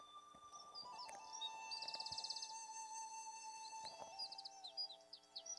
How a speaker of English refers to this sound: It is a phone call.